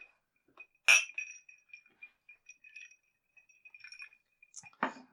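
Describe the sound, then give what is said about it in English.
Glasses clink together in a toast: a bright sharp chime near the start, a scatter of lighter ringing taps, and another firm clink at the end, clear with no talking. “I just want to send out a quick cheers to my lovely mother, and I'll always think of you.”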